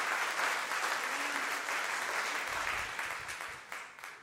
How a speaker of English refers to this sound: All the married men and women are clapping.